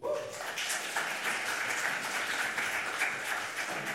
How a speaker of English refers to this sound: I promise I didn't do that for another round of applause, but I will be graduating.